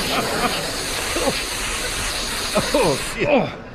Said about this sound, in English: What are you spraying us with, woman? Plaisir de la nuit. That'll be some kind of perfume. No, it's mace.